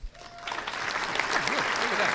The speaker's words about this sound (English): Hey, I've got an applause button.